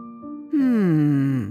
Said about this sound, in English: I'm super duper sleepy, Papa Bear said as he covered his mouth while he yawned.